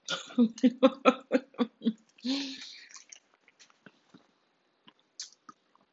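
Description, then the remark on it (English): Chewing candy near the microphone, with soft wet clicks and smacks scattered sparsely after an opening burst of rhythmic, laugh-like voiced sounds. “But I'm not chewing in your ear. I'm so sorry.”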